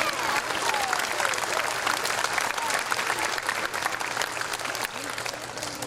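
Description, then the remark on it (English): A steady wash of audience applause, many hands clapping densely and evenly for about six seconds at a fairly loud, constant level, with faint crowd murmur underneath. “Let's clap it up for that one time.”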